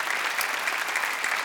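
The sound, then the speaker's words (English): A crowd claps steadily as a clap offering to the Lord, the dense patter of many hands blending into a continuous, fairly loud wash of applause with no voices standing out. “Somebody give the Lord a clap offering today.”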